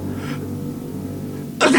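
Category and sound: human body sound, sneeze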